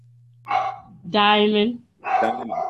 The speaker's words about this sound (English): Who's that? That's CeCe's dog.